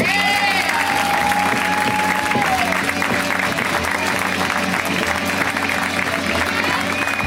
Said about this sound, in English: So please give a huge round of applause to Mary Mack.